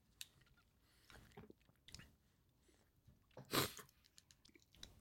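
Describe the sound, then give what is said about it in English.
Two people chewing a Built Bar protein bar make wet chewing sounds with irregular soft crunches and squishes, including one louder bite midway, against a quiet background with no talking. “Great audio content here in … and I chew this Built Bar.”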